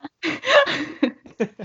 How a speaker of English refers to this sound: Gasp.